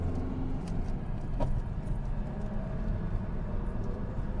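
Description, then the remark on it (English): Steady, loud low rumble of a small Renault car's engine and road noise on the Nürburgring race track, holding fairly constant throughout with no distinct approach or fade, and no voices. “Another small car. Renault. There's a Renault's here.”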